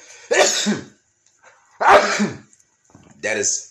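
A loud sneeze erupts in a sharp burst, followed by two more forceful, breathy explosive bursts spaced about a second apart, with short pauses of silence between them; the sneezer says it is from allergies.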